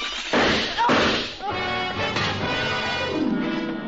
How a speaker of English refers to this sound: The revolver barrel that crashed through the darkened windowpane behind the bar spoke twice. I answered it.